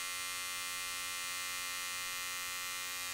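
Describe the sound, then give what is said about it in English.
An electric shaver hums steadily, a dense buzzing drone that holds one pitch and stays at an even loudness for the whole few seconds, with no voices. “She heard that one-note song, that sweet humming, and it got louder.”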